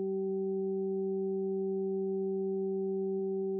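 Three pure sine tones, Solfeggio frequencies of 192, 384 and 768 hertz, sound together as one steady, unwavering hum, held at an even level for the whole few seconds with no voices or other sounds.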